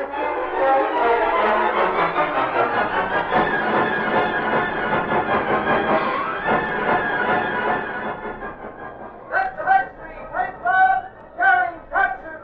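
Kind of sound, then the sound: ambience, train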